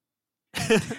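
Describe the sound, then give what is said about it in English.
A single big gulp of water, a short throaty swallowing sound with a voiced, slightly rasping edge, heard alone after a moment of silence and lasting about half a second. “Taking a big sip of water. Big swig.”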